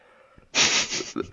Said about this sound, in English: Sniffle. You got a small sniffle